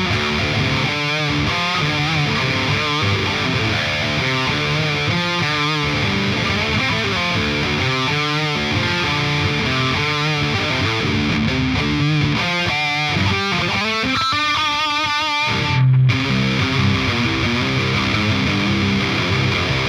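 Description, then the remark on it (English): Heavy distorted electric guitar played alone through a speaker cabinet impulse response, with chugging rhythmic riffs and sustained chords, loud and dense, ending in a brief bend before a final ringing chord. “Here is the JZIR. That's Jason Zadora. Impulse response.”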